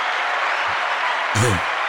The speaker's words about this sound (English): But a round of applause for everyone out there working the polls.